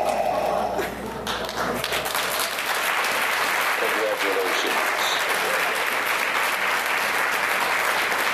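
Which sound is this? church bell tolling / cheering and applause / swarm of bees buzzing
cheering and applause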